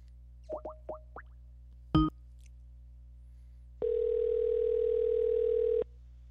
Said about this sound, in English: We're going to get a guy on the phone right now, get that interview going. So give me 1 second, and we will dial him up.